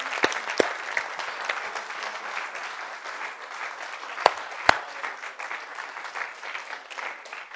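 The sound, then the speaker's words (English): A church audience applauds steadily for several seconds to welcome people who have just prayed to become Christians, a dense wash of clapping with a few sharper, louder claps standing out near the start and midway through. “So church, let's just applaud them.”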